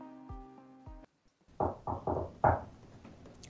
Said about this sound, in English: Are we getting a knock on the door? Mm-hmm. Okay, well, we can pause for a minute.